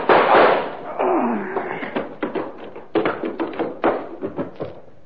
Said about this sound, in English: All I need is this gun. What gun? Yeah, the kind of goes bang, bang, like this.